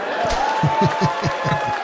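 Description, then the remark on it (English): Scattered clapping from a small audience at the stand-up comedy special Ball Hog, a handful of uneven, muffled claps repeating irregularly for about two seconds over a low crowd murmur, with no voices standing out. “Some people clap.”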